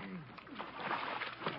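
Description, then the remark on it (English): Water sloshes and splashes steadily beside a launch as a man floating in the water is pulled out, continuous, with a brief faint voice murmuring underneath. “pull him out of the water.”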